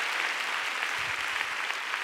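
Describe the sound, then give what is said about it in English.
A church audience claps for God during a sermon, a steady, dense, continuous wash of many hands applauding at an even level throughout, with no voices standing out. “Come on, go ahead and give God a big clap.”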